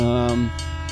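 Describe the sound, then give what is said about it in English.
A loud, steady train horn blares for about half a second, then cuts off, leaving the low rumble of a passing train. “Bob, be careful. Train's coming.”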